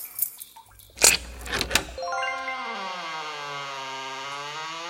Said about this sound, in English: I just got to jiggle out my ring of worm keys here to open this door. Ah, here we are.